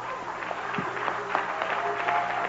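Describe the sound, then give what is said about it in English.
An audience claps their hands in a dense, steady burst of applause, the many overlapping claps holding an even loudness, with crowd voices mixed underneath. “Let's give our hero a hand clap.”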